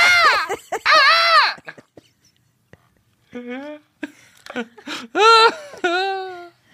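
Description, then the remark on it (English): A distressed rabbit call played from a caller: loud, high-pitched squealing cries in several wavering bursts, some short and some drawn out, separated by brief silences. “And one distressed rabbit.”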